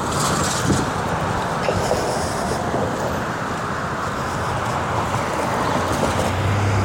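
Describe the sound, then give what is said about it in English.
Loud road traffic rolls past on a street at night in a continuous rumbling roar, cars passing one after another with no break and no voices, heard while walking to a store. “I'm just pausing for all the cars to go by.”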